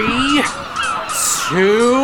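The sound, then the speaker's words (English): Large birds squawk loudly in two harsh, honking bursts, separated by a brief rush of hissy noise, with no talking, as the birds fly low over a deck where nets are about to be thrown to trap them. “Okay, the birds are getting low.”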